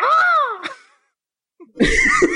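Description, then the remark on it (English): A person lets out a high, wavering vocal shriek that rises and falls in pitch, then after a short silence gives a second harsher, noisier cry, both loud, imitating the disdainful shrieks of Hagrid's furniture from a passage being read aloud. “It's hard to make a disdainful shriek because a shriek to me sounds a bit more like shrill”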